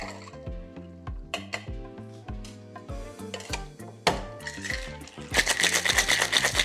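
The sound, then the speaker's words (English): A cocktail shaker full of ice, gin and Chinese five spice syrup is shaken hard, a loud, fast, rhythmic rattling that bursts in near the end after a stretch of plucky background music and a few clinks. “Keeping this one nice and simple, then all we've got to do is give it some ice, give it a shake, and we're away.”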